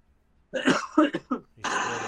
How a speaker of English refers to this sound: Are you coughing into somebody's arm?